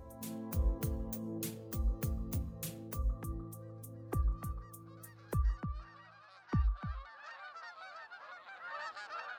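A flock of geese honks loudly and repeatedly in a quick, uneven series of calls for several seconds, then the honking stops and a soft rushing background noise continues.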